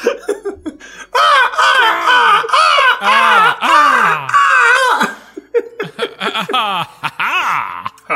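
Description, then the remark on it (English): Several voices join in loud, overlapping imitated raven caws, rising and falling cries mixed with laughter for several seconds, then trailing off into scattered shorter calls and giggles. “The ravens above you begin to scream in delight. Yeah, do the ensemble caw again.”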